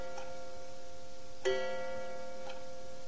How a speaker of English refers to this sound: I found the clock, the big old-fashioned number with a pendulum, in the tower atop the Board of Trade building, which, of course, housed the pit, the floor of the grain exchange, the place where the traders operate.